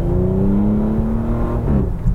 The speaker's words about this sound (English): When you are full throttle, you get some nice snaps and crackles from the exhaust, a nice throaty tone. Overall, the exhaust note, I didn't find it as offensive as I previously have found this V6.